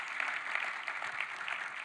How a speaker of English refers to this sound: Can we clap for everybody that helped put on the gala?